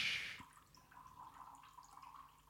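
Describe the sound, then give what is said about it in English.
Mango juice drink from a can is poured: a short burst of liquid splashes at first, then settles into a steady, trickling pour with faint dripping, fairly quiet, with no one speaking. “Can you hear that pouring?”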